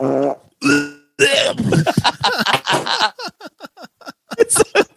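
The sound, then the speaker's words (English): A voice imitates farting noises: a couple of drawn-out buzzy raspberries followed by a rapid run of wet sputters and short pops, fairly loud, with no real words spoken. “so I pretended – I made farting noises to seem like my vomit was poop.”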